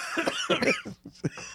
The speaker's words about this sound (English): For the record, you saying it in that order almost is what made me start coughing.